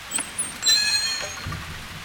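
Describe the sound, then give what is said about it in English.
Steady rain falls on a railway platform, hissing across a broad wash of noise, with a few soft patters and a brief high-pitched whine cutting through midway. No one speaks. “For the longest moment, I looked up and down the platform as the rain continued to fall, then took a deep breath and stepped inside.”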